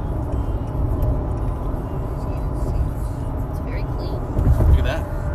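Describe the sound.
Steady low engine and road rumble from inside a moving Honda Accord car, continuous throughout and swelling slightly near the end, with faint muffled voices in the cabin.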